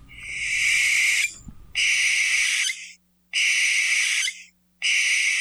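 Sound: barn owl call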